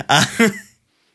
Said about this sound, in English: I think for a moment you just hear the agitated breathing of somebody trying not to have a panic attack.